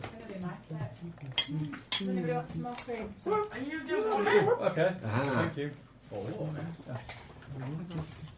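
Spoons clink and scrape against plates in quick, irregular taps as people eat cake, while several people chat and chuckle over the top.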